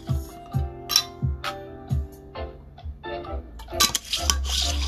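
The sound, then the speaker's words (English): Someone getting a drink of water: a series of sharp, ringing glassy clinks in an irregular rhythm, followed by a brief louder rush of splashing or handling noise at the end, with no talking. “Let me get some of this water.”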